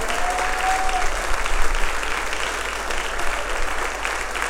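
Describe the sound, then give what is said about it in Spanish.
An audience claps steadily and continuously in worship, applauding the Lord, a dense wash of applause holding at a fairly even loudness throughout with slight swells, and no voices standing out. “Vamos, alguien puede darle un aplauso al que vive y reina para siempre.”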